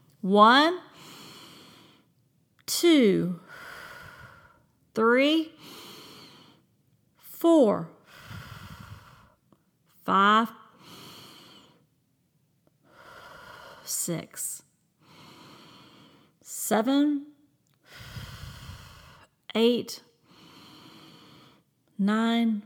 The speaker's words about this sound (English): I want you to take some deep breaths with me, and we're going to do it to the count of 10.